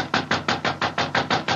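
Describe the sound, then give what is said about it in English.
A quick, steady run of about nine firm knocks on a dressing room door at a theater, evenly spaced, with no voices in between. “He must be in his dressing room. I'll knock again.”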